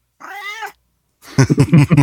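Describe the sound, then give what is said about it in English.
A Bengal cat named Jonas, an Asian leopard cat with leopard-like rosettes, gives one drawn-out, clear meow, then after a short pause lets out a louder, rapid string of choppy yowling cries. “Yeah, like he's a Bengal. He's a Bengal. He's an Asian leopard cat.”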